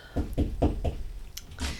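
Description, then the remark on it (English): A visitor knocks on a door: a quick series of four solid knocks, evenly spaced, followed by a short pause, a faint click and one more dull thump. Fairly loud, with no one speaking. “I don't know why you knocked there”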